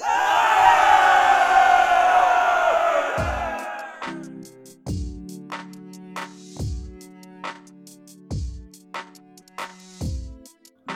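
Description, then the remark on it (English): A large group of soldiers roars and cheers together in victory for about four seconds in the evening air after the enemy surrenders. The cheering then gives way to slow, heavy drum beats over a low sustained drone. “They were swiftly taken into custody by the white and gold Holy Legion, and a cheer of victory rose up in the evening air.”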